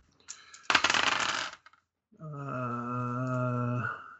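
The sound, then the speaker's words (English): A short rattling clatter of dice tumbling across a hard surface, fairly loud, rolled for a Spot Hidden roll in a game, followed by a steady droning hum that holds for under two seconds. “I have dice.”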